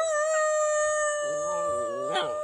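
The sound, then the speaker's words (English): A dog howls, a wavering, rising-and-falling cry that starts partway through over a steady, unbroken high electronic tone that runs the whole time. “I'm going to see if I can make my dog bark.”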